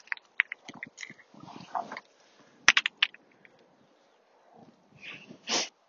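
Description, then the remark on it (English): Stones clink and knock together in scattered, irregular taps as bits of stone are cleared from around a central cairn, heard in the distance, with a sharp cluster of hits midway and a longer scraping burst near the end; no one speaks. “Hope you can hear the clinking stones in the distance.”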